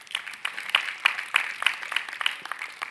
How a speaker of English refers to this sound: Thank you, Mom, for that clap.